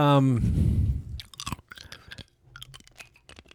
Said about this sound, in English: I gotta get this ice. I'm out. Yeah, not great for audio. You're chewing on an ice cube.